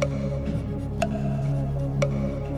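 A countdown clock ticks twice, exactly a second apart, each tick crisp and sharp over a steady, droning musical hum in the background.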